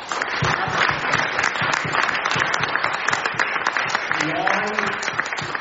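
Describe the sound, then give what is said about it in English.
A crowd claps steadily for the panelists in a dense, continuous wash of overlapping hand claps, loud and sustained throughout, with a brief voice or cheer rising through the applause near the end. “So, look, another round of applause.”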